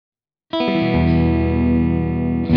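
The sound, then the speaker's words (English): A loud, sustained electric guitar chord played with the effects pedal switched off rings out with a rich, slightly gritty tone, holding steadily for about two seconds before a fresh strum at the end. No one speaks. “when I set this pedal up initially, it made the signal very dark. So we'll see. We'll have a play and we'll see. So this is off.”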